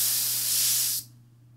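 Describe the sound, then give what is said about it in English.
A steady hiss of compressed air spraying paint from an airbrush, fed by a compressor at about 45–50 PSI, for about a second, then cutting off abruptly, leaving a low constant hum underneath. “Make sure you spray like for a little bit of time, and if your, you know, little gauge drops down a lot, then you just adjust it until it's a constant pressure.”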